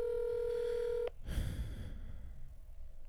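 A steady electronic ringback tone from an outgoing phone call hums for about a second, then cuts off abruptly into a burst of breathy rustling noise.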